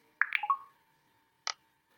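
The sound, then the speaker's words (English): A quick burst of short, bright electronic blips, then after a brief pause a single crisp click from tapping a touchscreen using the mBraille keyboard. No voices, just these small device sounds in quiet. “When I touch the screen, you heard a click, so I do one finger flick up.”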